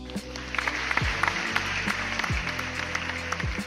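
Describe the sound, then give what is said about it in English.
A round-of-applause sound effect: steady applause from a crowd, a dense wash of clapping with sharp individual claps throughout, over low droning tones and a couple of brief downward swoops. No one speaks. “Yeah, round of applause.”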